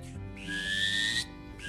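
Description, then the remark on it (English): A person imitates a drake mallard call as the wildcard round of an NWTF crew demonstration of turkey and wildlife calls, producing one drawn-out, whistly note that rises slightly in pitch, fairly loud, with no talking. “And for the wildcard round, a drake mallard,”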